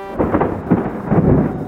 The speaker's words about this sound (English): Thunder is a sound that comes right after a lightning bolt strikes.